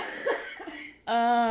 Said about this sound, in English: She's sick and coughing and dying.